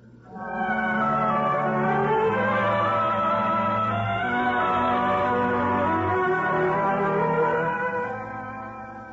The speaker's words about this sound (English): I hope we can sleep without those bells clanging over us.